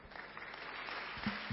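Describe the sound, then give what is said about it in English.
A church audience claps for the interpreter, a dense, steady patter of many hands filling the whole clip with no clear beats, with a couple of brief low thumps near the end. “Clap for the interpreter.”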